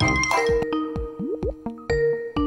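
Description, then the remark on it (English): A bright electronic video call ringtone plays a short, bouncy melody of plucked notes with a few quick upward pitch slides, clear and fairly loud with no voices, as a guest is called on a live NPR comedy show. “I don't want to hear any ringing. I don't want to hear any dialing.”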